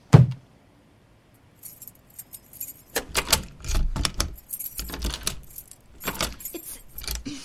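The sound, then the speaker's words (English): Keys jingle and clatter in bursts against a lock as a door is unlocked, metallic rattles coming in uneven clusters with brief pauses, no voices present. “Here's the key for the door. Lean yourself against it while I open it.”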